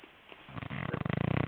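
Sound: dog snorting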